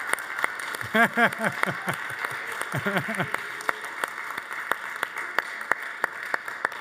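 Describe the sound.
Scattered audience clapping at a church, honoring the speaker's wife as she stands, a steady patter of sharp individual claps running throughout, with a couple of brief voiced shouts or cheers rising over it near the start.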